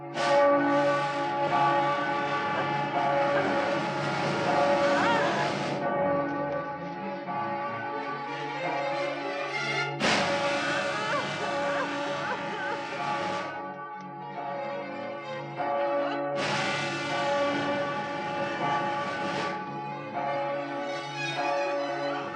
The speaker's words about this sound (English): Of course, laid in the sound of the bell, but I would think in real life a bell that close of that size would be deafening.